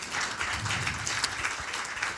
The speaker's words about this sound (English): And yeah, you can clap for that.